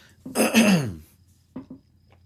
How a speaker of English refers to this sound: I'm gonna get one of them buttons for when I clear my throat, guys. I'm sorry, we're not professional.